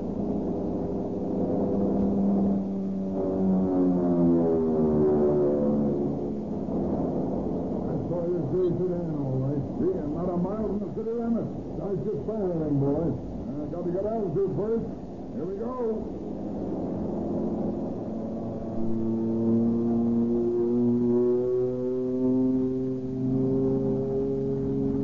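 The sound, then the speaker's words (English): A loud, steady airplane engine roars throughout as a plane carrying a pilot and a passenger dives down over the country north of Tucson, its droning pitch sweeping up and down, with wavering harmonic whines rising and falling over about twenty-five seconds. “Hold on, we're going down.”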